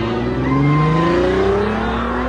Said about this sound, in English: Bruce was just fixated on Joker as a car pulled up. Joker and his goons got in the car and drove off.